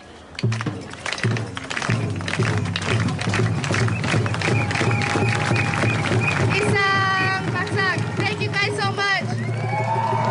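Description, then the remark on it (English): A crowd performs a unity clap together in a steady, rhythmic beat that gradually speeds up, with loud cheers and whoops rising over the clapping toward the end. “And so just to end it all, if you guys could join me once again for the unity clap.”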